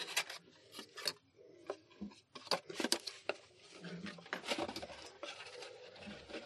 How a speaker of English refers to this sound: Making lots of awful cardboard noises over here.